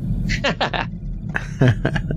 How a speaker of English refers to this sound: Did you hear the dog barking every now and then? I did. Yeah. What was that? That was the little sausage dog that I was telling you about that kept barking at the cats and the dinosaur.